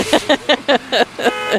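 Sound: car horn honking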